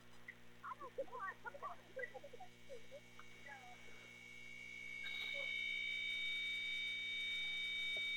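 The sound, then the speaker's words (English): A steady electrical mains hum drones throughout a broadcast, with a thin high-pitched whine joining it for the second half. Faint, indistinct voices murmur underneath during the first few seconds. “There's that hum again.”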